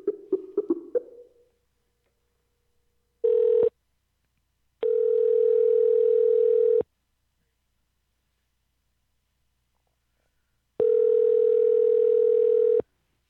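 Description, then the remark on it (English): A telephone line rings out with a steady, buzzing ringback tone: a brief clipped burst, then two long two-second rings separated by a long silence, preceded by a few quick muffled sounds. “I can't believe people still answer their phone.”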